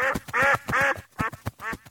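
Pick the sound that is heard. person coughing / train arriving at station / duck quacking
duck quacking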